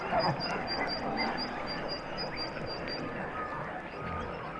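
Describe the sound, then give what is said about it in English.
A dense underwater chorus of harp seals, recorded by a hydrophone dropped a few feet below the ice: overlapping chirps, squeaks and warbling calls with a steady, rapid train of high clicks running through, continuous, with no talking. “Those are all harp seals.”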